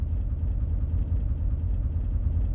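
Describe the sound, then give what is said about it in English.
A car engine idles steadily, a continuous low rumble with a slight throb and no change in pace, with no voices over it. The car is used for a field trip through the University of Minnesota's research fields. “To learn about what Kernza is and where it comes from, I hopped in the car”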